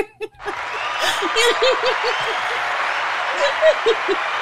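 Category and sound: sound effect, applause sound effect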